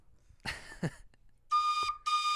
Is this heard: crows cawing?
no